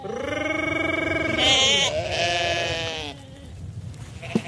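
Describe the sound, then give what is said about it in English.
Sheep at the Ferme du Puy, kept by Thomas de Bastos, bleat loudly, two long, quavering cries running into each other, then the sound drops to a quieter background with a brief knock near the end. “His sheep never end up as cutlets.”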